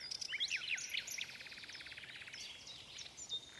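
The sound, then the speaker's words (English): A nightingale sings alone, mixing bright whistled notes with a fast, rattling trill of repeated pips in the middle, heard softly over a faint hiss of background. “The nightingale sang so sweetly that tears came into the emperor's eyes and rolled down his cheeks.”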